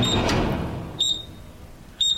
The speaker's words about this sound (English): Got a microwave. Do you want to hear the beep?